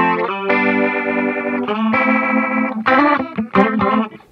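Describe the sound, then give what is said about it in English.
Sustained electric guitar notes and chords played through a pedal's Leslie rotary speaker effect, swirling with rotary, chorus-like modulation, fairly loud with a few sharp changes in the last second and no voices. “And this thing, you can tell the pedal, like, controls the speed of the Leslie.”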